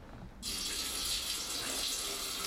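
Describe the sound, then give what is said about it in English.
A shower bursts on after a brief quiet moment, then runs as a steady, loud hiss of spraying water that continues unbroken to the end, with no voices. “Oh, yeah, this is a genius shower scene, considering they're on a set somewhere.”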